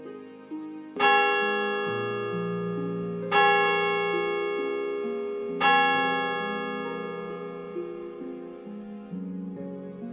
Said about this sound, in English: Above it looms a pointed tower of the town hall, with its slated roof and plate glass windows casting a long shadow over the square. Echoing across the mountains, the valley itself seems to resonate with the three tolls of the bell tower ringing.